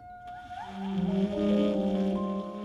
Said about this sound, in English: And it sounds, the way he's able to control it is so good. And then around like 213, you get like, I call them whale noises.